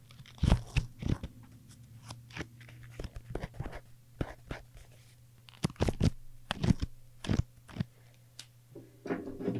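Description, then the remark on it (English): Crisp paper crinkles and flicks from a stack of post-it notes being handled for ASMR, coming in irregular bursts of sharp rustling taps over a faint steady low hum, with no talking. “Here's a stack of post-it notes.”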